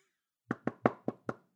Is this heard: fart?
no